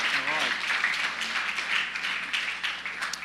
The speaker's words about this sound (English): Come on, give this wonderful man a round of applause. Thank you. Glad you're here, man.